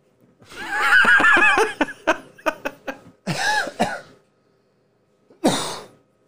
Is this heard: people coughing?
yes